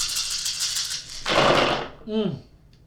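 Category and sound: dice being rolled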